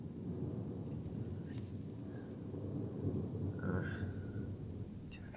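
Steady heavy rain pours down continuously at night, with a deep rumble of thunder rolling underneath and a faint high tone briefly rising through the downpour.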